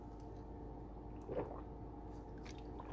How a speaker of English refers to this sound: You like hearing me drink water? Well, good. Just kidding.